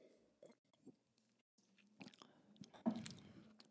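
Quiet mouth sounds of someone sipping a singer-branded wine: a slurping sip of liquid followed by wet smacks and a swallow, with a brief louder slurp near the end and no talking.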